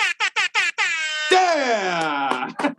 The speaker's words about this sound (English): Yeah! Well, with air horns.